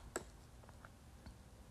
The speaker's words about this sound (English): I'm just clicking through.